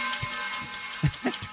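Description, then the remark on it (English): A ticking clock sound effect: quick, evenly spaced ticks, about five per second, with soft low thumps and murmur underneath. “Time for that ticking clock. Where's the ticking clock? There it is.”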